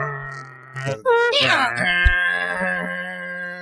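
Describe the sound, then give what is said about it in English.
A voice imitates the sound of an America Online (AOL) dial-up modem connecting, with buzzy droning tones, warbling pitch sweeps and a harsh screeching burst before settling into a steady, strained hum. “It's called a modem.”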